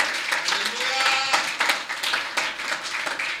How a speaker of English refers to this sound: Clap for God. Hallelujah.